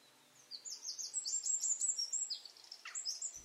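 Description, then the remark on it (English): A wren sings a fast, high-pitched burst of trills and chattering notes, loud, running for about three seconds after a brief quiet start, with no voices. “Bird of the month, the wren.”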